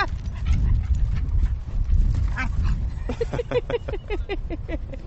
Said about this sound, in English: There's a very, very amusing dog play going on.